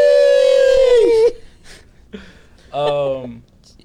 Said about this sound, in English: Yeah, it's my dog.